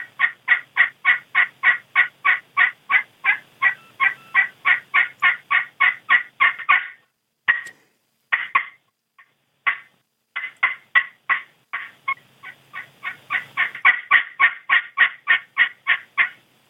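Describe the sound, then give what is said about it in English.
A slate turkey call worked with a striker moved in a slight egg-shaped pattern produces a long, fast run of raspy turkey yelps with a double note, in a steady, even rhythm. It breaks off briefly, then resumes. No one speaks. “Well, you can definitely hear that double note in the yelp.”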